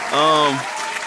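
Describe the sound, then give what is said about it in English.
A brief round of applause, a dense wash of clapping lasting about a second, with a sustained voiced cheer or whoop rising over the first half before fading. “I need to give a round of applause. Round of applause.”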